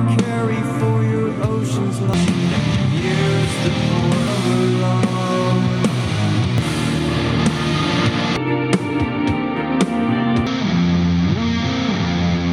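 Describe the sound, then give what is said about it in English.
Loud, dense shoegaze alternative rock from the fifth studio album by an Illinois band plays continuously, with heavily distorted, effects-laden guitars forming a thick wall of sound over a steady low end. No voices speak over it. “… is the fifth studio album by …”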